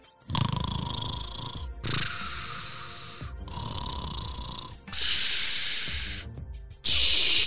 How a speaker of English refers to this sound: Are you messing with me? I hear you snoring on the walkie-talkie